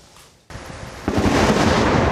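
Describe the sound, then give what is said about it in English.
A sharp thunder crack from a lightning strike bursts out of near silence, then swells into a loud, sustained roar of rumbling thunder, with no voices. The lightning struck Lafayette Park, across from the White House, during a storm. “The lightning bolt split the sky, striking four people in Lafayette Park just across from the White House.”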